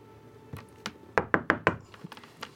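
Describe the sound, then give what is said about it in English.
A series of sharp knocks on a door: two lighter raps, then four loud, evenly spaced knocks in quick succession, followed by a few softer taps, clear with no talking. “Who is it? Your favorite Aormaton. Freida! Yes! The door opens up”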